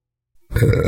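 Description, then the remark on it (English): A single loud, low, guttural burp breaks in suddenly after near silence and rumbles on steadily for about half a second, with no talking around it. “Oh, excuse me.”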